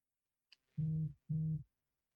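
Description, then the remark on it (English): A phone vibrates twice against a hard surface: two low, rattling buzzes of about half a second each, with a tiny click just before and no one talking. “I heard someone vibrate.”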